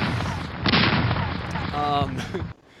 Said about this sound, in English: sound the cannon. It is a cannon.